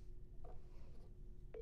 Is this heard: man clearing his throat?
no